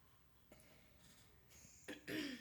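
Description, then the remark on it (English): A person clears their throat, a short rough rasp followed by a louder, longer guttural burst near the end, with no talking. “Let me clear my throat.”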